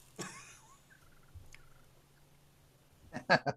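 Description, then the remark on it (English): A turkey call used for turkey hunting makes a sharp cluck, then a few soft, faint chirps, and ends with a loud, rapid rolling purr. “And I'm a big fan of, purring and clucking a lot.”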